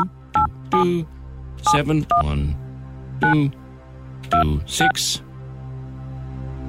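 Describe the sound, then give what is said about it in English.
A string of short electronic keypad tones sounds as a phone number, picked from hundreds of texts and WhatsApp messages, is dialed to place a call. About eight quick beeps come in irregular bursts over a steady low hum. “Let us go and see if we can get this person to answer their phone.”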